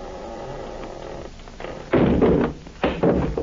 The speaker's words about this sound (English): Now listen, I'm going to shove the door open, shine my light in.